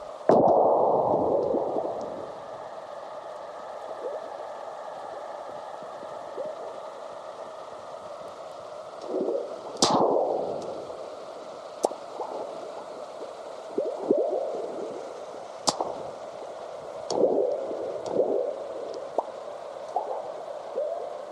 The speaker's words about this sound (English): But seismologist John Bullitt grabbed recordings of the Earth's natural low-frequency vibrations, sped them up, and shifted the pitch so the rumblings, earthquakes, and burps of ocean waves can be heard. They're showcased on his CD….